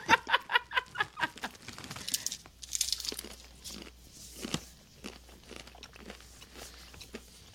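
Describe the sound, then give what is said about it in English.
Crunching of crisp Zambos chili lime chips: a quick run of about seven sharp crunches at first, then slower, irregular crinkly chewing and crackling, with no talking. “I like the crunch.”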